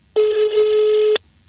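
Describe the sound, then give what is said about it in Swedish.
A single steady ringback tone from an outgoing phone call to a mother, lasting about a second, clear and fairly loud with no voices over it. “Eller vi ringer upp mamma Ingegärd och frågar”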